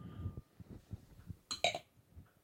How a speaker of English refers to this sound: What is the point of tapping the glass on the table? Anyone? See if you're so drunk that you break it on the table.